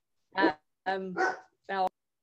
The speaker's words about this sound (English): Just for once, it's not my dogs.